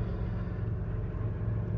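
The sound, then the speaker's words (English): An airplane goes by with a steady, deep engine rumble and a broad roaring hiss that holds an even loudness throughout, with no voices. “Thank you, Producer Eric, for plugging in that sound clip too in the end with a plane going by.”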